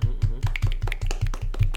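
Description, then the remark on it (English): Steady, rhythmic clapping at a brisk even pace, about four claps a second, with a low hum beneath it. No one speaks. “Round of applause, everyone.”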